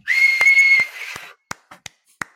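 A single steady whistled note held for under a second over breathy hiss, followed by a few sharp, isolated clicks or taps.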